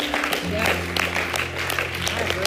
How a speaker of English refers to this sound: That's the worshipers clapping right there.